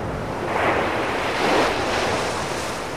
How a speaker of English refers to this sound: The heaving winter sea invokes a stormy wartime crossing on a small freighter, the crash of breaking crockery, the smell of seasickness.